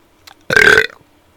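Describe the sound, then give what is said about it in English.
A person burps up rice: a single loud burp lasting about half a second, with a rough, throaty tone, preceded by a faint brief click and followed by quiet. “I just burped up rice.”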